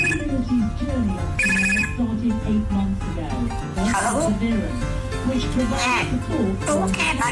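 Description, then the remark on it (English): A pet imitates a telephone ringing with a run of loud warbling tones and short steady beeps, mixed with chattery, speech-like vocal sounds throughout. “can also do an entire phone conversation from the ring to the cough once you've had your conversation and you want to hang up.”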